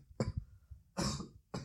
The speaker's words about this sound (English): My mom is making like something really spicy, I think. And it's making us both cough a bit.